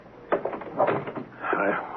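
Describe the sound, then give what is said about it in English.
A door is pushed shut with a sharp click of the latch, followed by a brief rattle and a soft creak as it settles. “Now, let's close the door.”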